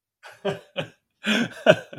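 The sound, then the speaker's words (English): A series of short, rough, fairly loud coughs in two clusters: three quick separate bursts, a brief pause, then a heavier run of coughing with no talking. “I was looking for my cough button, actually.”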